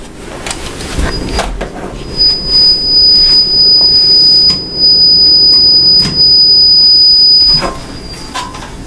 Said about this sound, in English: Are you near a train? What is going on? No, why? What the fuck? It sounds like a train, or is that me? It's you, I think.